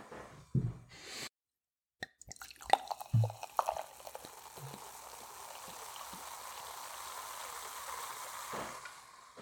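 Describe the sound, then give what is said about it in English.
A few sharp clinks and splashes, then a steady fizzing hiss that builds and holds as champagne is poured into a glass and bubbles up, with no voices. “I'm pouring this wine now.”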